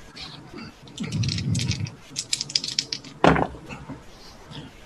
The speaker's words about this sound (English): All right. So three dice coming at you.